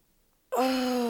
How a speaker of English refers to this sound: Let's start with a good yawn stretch. Maybe roll your shoulders a bit.